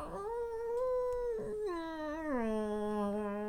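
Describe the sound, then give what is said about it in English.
A creaky door lets out one long, drawn-out whining creak, a steady tonal squeal that slides down in pitch, wavers, then settles lower for about three seconds, with no talking over it. “close that creaky door.”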